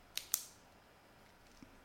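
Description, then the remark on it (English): Two quick, crisp mechanical clicks close together as a pen is clicked, followed by quiet with a faint soft thump near the end. No one speaks. “Why are you clicking your pen?”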